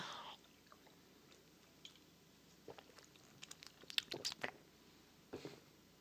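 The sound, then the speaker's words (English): Someone gulps a Diet Pepsi, with quiet wet slurps and mouth clicks clustering into a brief burst of swallowing near the end, then a final gulp. No talking. “Can you hear the Diet Pepsi dripping down my chin? The gross guzzling.”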